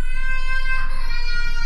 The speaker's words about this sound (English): It was perhaps 2 o'clock when I heard a child crying.